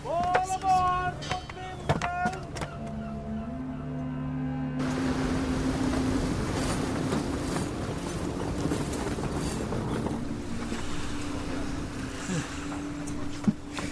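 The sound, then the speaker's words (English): Busy ambience in the harbor of Tuman Bay: a steady wash of water and a low droning boat engine, with scattered clanks and voices in the background. Opens with a few brighter tonal calls before the broad noise settles in. “It's quite a sight. The harbor of Tuman Bay.”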